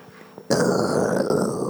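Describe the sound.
A person imitates a bear with a loud, sustained guttural growl that starts abruptly after a brief quiet moment and rumbles steadily for over a second.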